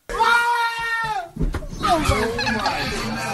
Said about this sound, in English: Let's just hear the scream again.